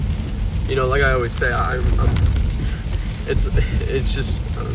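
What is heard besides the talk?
car driving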